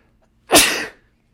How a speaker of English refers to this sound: Oh fuck, I'm about to sneeze. Yeah. Oh fuck.